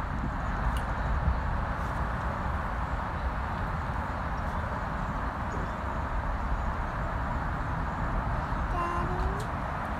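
A steady, unbroken roar of traffic on Highway 280 in San Francisco fills all ten seconds, dense and low. A few faint, brief bird chirps barely poke through, and a short rising tone appears near the end.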